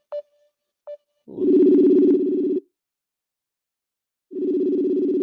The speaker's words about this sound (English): He don't want to pick up the phone. All right. Let me see if my nigga pick up the phone.